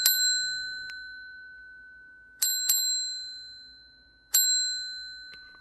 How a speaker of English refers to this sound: Yeah, that's the bell I finally remembered to bring down to the basement